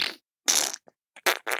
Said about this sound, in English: I guess what I'm trying to say is I'm sorry to my husband. You know, he farts a lot.